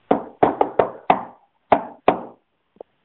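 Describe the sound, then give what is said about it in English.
Firm knocking on a door, demonstrating how to knock at someone's door: a quick run of five raps, a short pause, then two slower knocks, followed by one faint tap. No one speaks. “I hope y'all can hear this. This is how we knock, by the way.”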